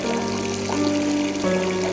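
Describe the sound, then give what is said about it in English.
A steady, continuous hiss of urine spraying in two or three streams from a single hole into a toilet, splashing and holding an even loudness throughout with no voices. “When I stumble forth out of the bed and finally get to that porcelain throne and release, suddenly the golden shower is spraying in all sorts of directions, two, maybe three streams coming forth from the single hole.”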